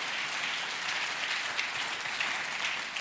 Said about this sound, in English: Give these guys a hand clap of praise and say amen.